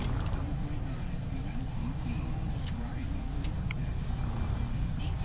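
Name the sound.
car driving on road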